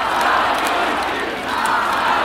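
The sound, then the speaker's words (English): A large crowd of thousands of mourners at opposition leader Alexei Navalny's funeral in Moscow, amid a heavy police presence, makes a dense, continuous roar of many voices. It is loud and steady throughout, with some raised shouts swelling within it and no single speaker standing out. “The crowds at yesterday's funeral were so large and the police presence so heavy that most never made it into the church or onto the grounds of the cemetery where Navalny was laid to rest.”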